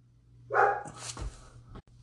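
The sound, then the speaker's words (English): A dog, Mr. YLP Jr., barking at the door lets out a single loud bark followed by a shorter, rougher yelp, with a low steady hum running underneath and no talking. “was barking at the door again because he thought something was there.”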